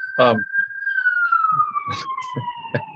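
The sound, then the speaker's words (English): Fire truck sirens wail as fire trucks go by in the city, a long steady tone that slowly drops in pitch as they pass, with brief bursts of people talking over it. “Sorry, there are fire trucks going by in the city.”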